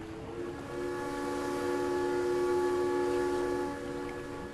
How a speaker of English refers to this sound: And just over your shoulder is the sound of a slowing train as it pulls into station.